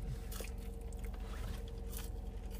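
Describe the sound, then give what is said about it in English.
Crisp crunching of someone biting into and chewing crispy, spiced french fries, large to average in size, a few sharp bursts over a steady low background hum, with no talking. “Same crisp. Yep, that's definitely there. That, like, nice crunch.”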